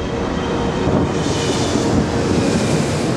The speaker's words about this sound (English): The door to the jetway closes, and the plane begins to taxi without Peaches and Miss Bag aboard.